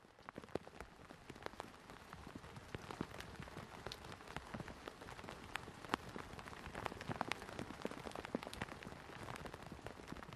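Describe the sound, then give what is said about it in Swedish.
Steady rain patters on tent canvas, a dense continuous hiss of drops with frequent sharper taps standing out, moderately loud, with no voices throughout. “Ja, regn på tältduken.”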